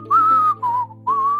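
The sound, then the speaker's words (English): A short, breezy whistled tune of three sustained notes, clear, the middle note dipping slightly lower before the melody rises again, with a faint low hum underneath, mimicking Trump leaving out the back door. “Trump leaves out the back door like whistling.”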